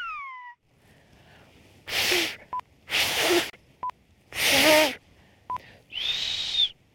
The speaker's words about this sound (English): The Canary Islands have a song of their own, in a whistle carried on the wind. It's a language born long ago that we learned could be quite a mouthful.